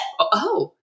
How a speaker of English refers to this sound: To bless you. Woo! That that was a big one.